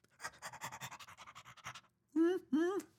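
Quick, rhythmic dog panting, about a dozen breathy huffs, steady, followed by a brief pause and then two drawn-out, tonal yelping calls.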